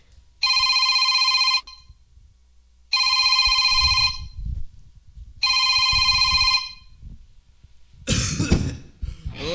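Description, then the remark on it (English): A telephone rings three times on an outgoing call a man is placing, in steady, evenly spaced bursts, each about a second long, over faint low rumbling, followed by a sharp cough near the end. “Fucking lawyer, and this deal's on. I'm calling him.”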